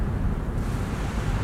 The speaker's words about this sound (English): Large wave off the port. Brace. Hold on.